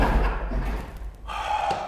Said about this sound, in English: close the door!